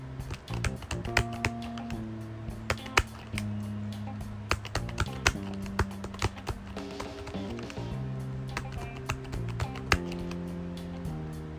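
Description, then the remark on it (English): Keys on a six-key braille writer being pressed, a run of sharp mechanical clacks at an uneven typing pace, some struck harder than others, over a steady low tonal background. “You can tell that I am writing with 6 of these. Without any of these keys, I cannot type.”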